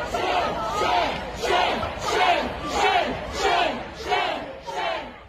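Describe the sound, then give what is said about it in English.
A large crowd of protesters in front of Minneapolis Mayor Jacob Frey's house boos and jeers at him as he walks off, in loud, swelling waves, roughly six rhythmic surges of shouting that rise and fall, sustained throughout. “Frey was booed and jeered at as he walked off.”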